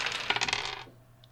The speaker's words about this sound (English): I'm going to roll more dice against you because you have a big roadblock in your way.